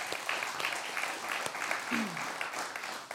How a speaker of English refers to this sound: So just give those leaders and those kids a round of applause for being here.